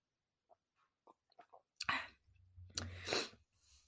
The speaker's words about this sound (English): I take a little sippy sip.